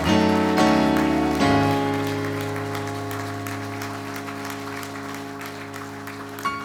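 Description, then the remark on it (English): A church audience applauds steadily for several seconds, the dense clapping continuing while sustained organ-like music plays underneath, both slowly easing in loudness toward the end, as the people clap for a speaker at the end of his talk. “Look at the people clapping.”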